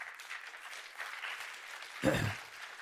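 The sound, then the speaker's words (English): An audience applauds in a steady, low wash of clapping, with a brief louder burst of claps or a thump near the end. “So now that you've applauded, let me say this.”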